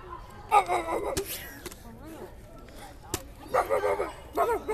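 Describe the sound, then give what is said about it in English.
A female dog barks in a few short, sharp bursts, with quieter rustling and faint yips in the pauses between barks. “She's barking.”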